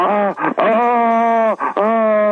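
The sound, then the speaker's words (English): A sneeze that never arrives during a phone call: two long, strained, moaning "ahh" tones held at a steady mid pitch, broken by quick gasping breaths, with no burst at the end. “It's one of those sneezes”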